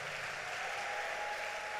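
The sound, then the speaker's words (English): A church crowd claps steadily for the choir, a dense, even wash of many hands applauding at once with no pauses and no voices standing out. “Clap one more time.”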